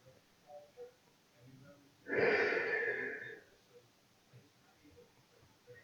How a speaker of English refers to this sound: And I think that's why when I yawn and I say I'm coming back, I yawn again because it's telling me to just let it out, to keep yawning. My nose, it's stuffy at the, just from yawning, just the sorrow of it.